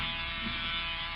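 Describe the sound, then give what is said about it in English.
A bumblebee buzzes steadily around a person lying in a hammock, circling for a landing: a continuous droning hum with a slightly rough, shifting texture and even loudness throughout, with no voices. “Go away, bee, go away. Looks like he's circling for a landing.”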